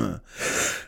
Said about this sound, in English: I'm sitting here talking at a goddamn light speed, and then the next thing you know, I'm fucking coughing up a lung.